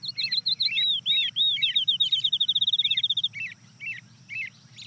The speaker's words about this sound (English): You can hear some birds in the distant background, but the next bird to join is a field sparrow.